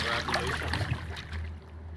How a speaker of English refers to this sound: Steve's pulling the boat in.